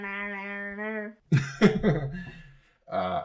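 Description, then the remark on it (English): A steady hummed vocal tone, then a raspy, gravelly throat clearing in a couple of rough bursts, followed by a brief voiced hum. “Let me clear my throat.”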